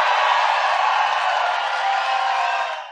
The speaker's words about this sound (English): That was, of course, the former president receiving raucous applause at CPAC over the weekend for his false claims that the election was stolen.